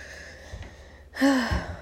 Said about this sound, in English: Clearing my throat.